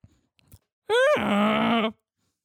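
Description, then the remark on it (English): A loud human moan imitating a donkey: a single strained cry that starts high, then drops into a low, buzzy, sustained groan lasting about a second, preceded by a few faint clicks. “That was a donkey coming.”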